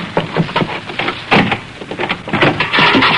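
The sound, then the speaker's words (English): Clicks and rattles of a lock on a house door being worked, followed by the door swinging open, a busy cluster of sharp mechanical knocks and scrapes with no voices. “There's no need to lock your door in this house”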